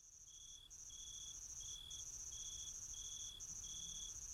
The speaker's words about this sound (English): This is where we need that cricket sound effect right now. Well, we'll put it in post-production.